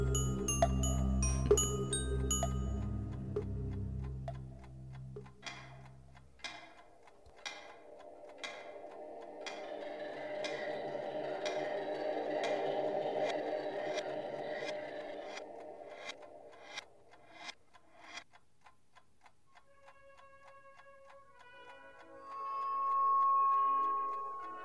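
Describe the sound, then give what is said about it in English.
A clock ticks in a steady, even rhythm, sharp, over a low humming drone, with a rich musical swell before the ticking begins and a brief tonal passage at the end. “Sir, the clock isn't for sale.”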